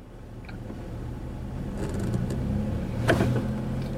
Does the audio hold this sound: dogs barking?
no